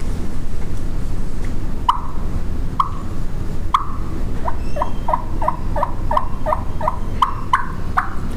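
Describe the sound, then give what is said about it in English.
Soft turkey clucks and yelps from a cutter call, with air channelled to the right side of the call to stop the top reed fluttering. It starts with a few spaced single notes, then runs into a quicker series of high, clipped yelps over a steady low rumble. “I use a cutter call.”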